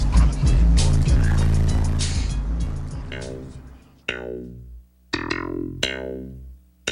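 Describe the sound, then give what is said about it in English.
A car rumbles by with a thick wash of noise and heavy low bass from its stereo system, then several punchy, booming bass hits ring out and fade, spaced roughly a second apart. “It seemed like every car that would go by, you know, bumping their stereo systems, it was the same bass line.”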